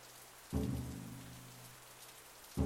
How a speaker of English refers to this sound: I like to imagine it in the pouring rain.